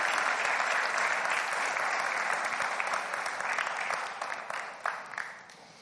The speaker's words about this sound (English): Can we give a clap offering to our Lord? As an acceptance, it is a joy to us.